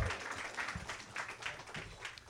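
An audience applauds, with dense, overlapping clapping that holds steady for a couple of seconds at a fairly soft level, without any voices over it.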